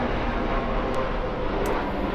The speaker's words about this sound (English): And thank you for the patience that you guys show with all the planes that are passing by. We're right in the flight path